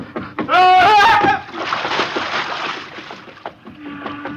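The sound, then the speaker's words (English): A loud, wavering shout rings out, then a heavy splash as a man jumps into the ocean, followed by a few seconds of churning, rushing water. “Oh, madman, to jump in the ocean.”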